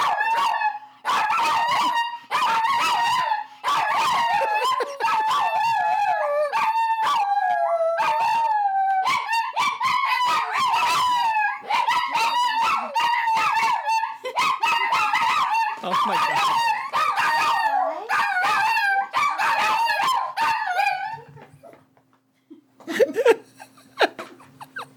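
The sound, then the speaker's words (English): Dogs howl loudly and continuously for about twenty seconds, long wavering cries rising and falling in pitch, breaking off abruptly before a few faint, brief sounds at the end. “You guys were talking about your ancestors. Yeah. Yeah? Do you want to howl? They go, ooh.”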